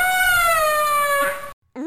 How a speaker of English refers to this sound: If you thought a head crab was bad, imagine a massive one, right? With a bulbous sack hanging from it that sounds like an elephant that stubbed its toe.